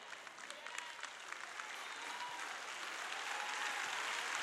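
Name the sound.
audience clapping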